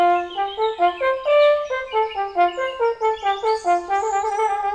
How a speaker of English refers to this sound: Minding her own business, like one does, she is suddenly startled by the sound of a hunting horn.